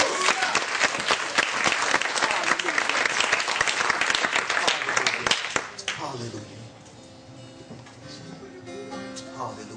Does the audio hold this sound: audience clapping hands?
yes